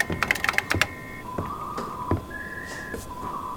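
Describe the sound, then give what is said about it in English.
Keys are tapped on a just-unlocked electronic keypad for a paid satellite link. A quick flurry of clicks with short beeps comes first, then a few slower presses, each with a longer steady tone at a different pitch. “I'll unlock the keypad. Right. Keypad should be working.”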